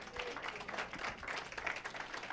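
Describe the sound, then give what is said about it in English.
An audience claps hands in praise for Foundation, a dense, steady burst of many overlapping claps that holds at an even, fairly loud level throughout with no voices standing out. “Come on, give Foundation a hand clap of praise.”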